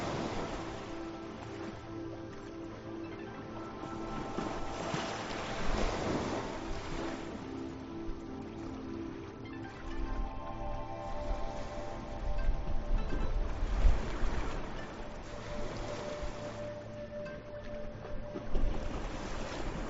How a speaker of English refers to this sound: Continue to allow the waves to wash away whatever no longer serves, and the wonderful fresh sea breeze to revitalize, cleanse, and re-energize.